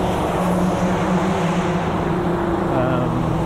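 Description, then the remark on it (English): Constant, loud roar of freeway traffic with a low engine hum running underneath, steady and unbroken for the whole stretch. “You can hear all the freeway noises.”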